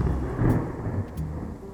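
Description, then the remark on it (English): A thunderstorm recorded in a field with a microphone called Fritz mounted on a metal pole, lightning flashing all around, with deep, rolling thunder rumbling steadily throughout, swelling slightly midway, and faint crackles and patter of rain on top. No voices. “I want to play you a couple minutes of a thunderstorm I recorded with Fritz.”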